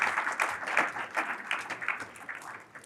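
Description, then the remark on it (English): An audience applauds steadily, a dense, crackling wash of many hands clapping at once at a moderate, even volume, tapering slightly toward the end with no voices. “Oh man, should we give these guys a round of applause?”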